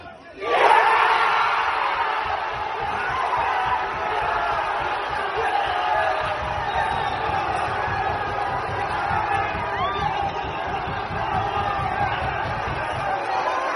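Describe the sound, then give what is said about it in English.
A huge football crowd erupts in a sustained roar after a goal, a dense wall of cheering and shouting that stays loud and steady throughout with no individual voices standing out. “So we heard the cheer first. I'm like, I think we've just scored there.”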